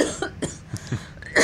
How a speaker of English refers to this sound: Memory is making you cough. Ah, memories.